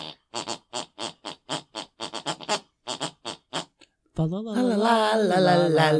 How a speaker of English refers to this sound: We listen 4,000 miles away to my mother snoring, because we are 6 hours ahead in London, of course. My mother snores whatever she listens to before she goes to bed.